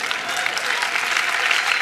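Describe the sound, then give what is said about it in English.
A church audience claps steadily, a dense wash of many hands applauding at once, fairly loud, filling the whole moment without any talking over it. “And I want you to know, I'm very grateful that you clapped, because it'd be very insecure if you didn't.”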